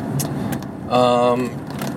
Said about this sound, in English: Of course, you can hear me. I'm in my car. Most of all these podcasts, you know, the solo cast, have been in this kind of situation, you know, where I'm coming or going from work.